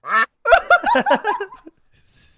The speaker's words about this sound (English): I'll quack it. And our first bird call.